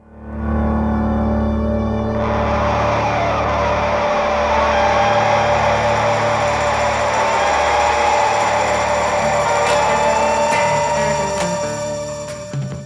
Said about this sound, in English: Sounds to me like a piano in the middle, with guitars panned left and right, heavy with echo. The guitar in the right channel begins to oscillate. That's when the echo feeds back on itself. This is an ominous way to start the song.